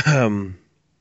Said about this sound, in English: Oh, sorry. Got a nasty cough.